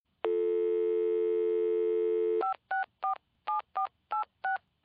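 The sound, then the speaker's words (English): A steady telephone dial tone hums for a couple of seconds, then a quick run of about ten touch-tone beeps as a number is dialed to pay a phone bill, clear with no talking. “Well, I'm just going to pay my phone bill, and then I'll come and help you.”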